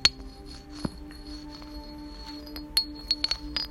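Hard rocks knocked together into a phone, in a handful of sharp, irregular clacks, each leaving a bright metallic ring that hangs briefly before the next strike. No voices.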